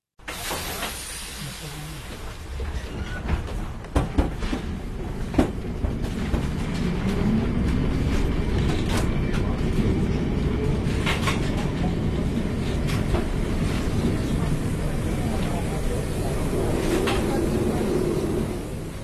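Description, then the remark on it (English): Steady low rumble of a number 28 tram in motion through the narrow streets of Lisbon, with sharp clacks and rattles from the wheels on the rails and a motor whine that rises as it picks up speed. “She took me on the number 28 tram route on a tour of the city.”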